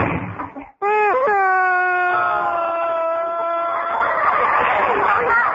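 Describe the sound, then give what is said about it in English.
A woman cries in a long, loud, high-pitched wail that holds a steady tone for a few seconds before breaking into rougher, ragged sobbing. “Don't cry, honey.”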